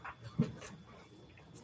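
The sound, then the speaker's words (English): A dog whimpers softly in short, faint whines, with one slightly louder yelp near the start, against a quiet background and no talking. “My dog, mi perro.”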